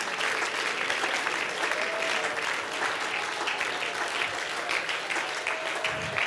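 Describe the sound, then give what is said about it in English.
An audience claps their hands to thank God at a church service, in sustained, dense applause that holds at a steady, fairly loud level throughout, a continuous crackle of many overlapping claps with no clear individual beats. “All over this room, why don't we clap our hands and why don't we thank God here today, because God is going to do the impossible.”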